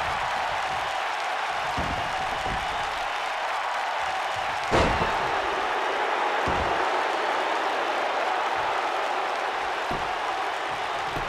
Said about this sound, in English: And Hogan slams him back down to the canvas.